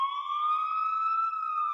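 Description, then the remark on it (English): A police siren played from a soundboard wails steadily and loudly, its tone slowly climbing through one long sustained rise with no voices or other sounds alongside. “Yo, you're going to jail.”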